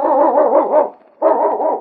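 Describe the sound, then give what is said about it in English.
A sled dog, the husky lead dog Yukon King from the radio show Challenge of the Yukon, barks loudly in two long, rough, sustained bursts, separated by a brief pause, with no other voices or sounds around it. “It's Yukon King, swiftest and strongest lead dog of the Northwest, blazing the trail for Sergeant Preston of the Northwest Mounted Police in his relentless pursuit of lawbreakers.”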